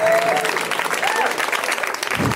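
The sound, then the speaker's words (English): Steady applause from an audience for Moses Storm, a dense wash of clapping that holds loud and even throughout, with a few faint whistles or cheers rising above it. “Give it up for Moses Storm, you guys.”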